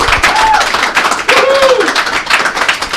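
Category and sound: crowd, applause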